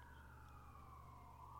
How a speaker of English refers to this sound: You got to have sirens outside at least once.